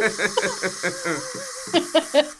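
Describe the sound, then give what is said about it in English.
Water runs steadily into a bottle with a constant hiss, broken by a quick series of gurgling, bubbling pulses whose tone rises as the bottle fills. “Okay, just so you know, I'm filling my water bottle with water.”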